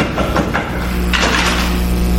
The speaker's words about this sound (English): He passed the door a dozen times before he had the courage to come up and knock.